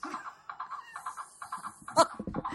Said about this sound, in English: What is that? It's my galloping horse sound effect.